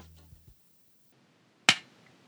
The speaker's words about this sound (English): Yep, that's the slap heard around the world. I'm talking about Will Smith and Chris Rock at the Oscars the other night.